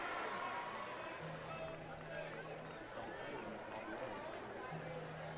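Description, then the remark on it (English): Steady ballpark crowd murmur at a baseball game as fans stream in, the biggest crowd in a couple of years with extra seating brought in; a dense, continuous babble of many indistinct voices at an even level, with a low droning hum that comes and goes twice. “Fans continue to stream into the ballpark here.”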